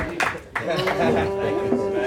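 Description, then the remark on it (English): An audience claps in scattered, uneven bursts amid a murmur of crowd voices, with a steady low hum running underneath throughout. “Why are they clapping?”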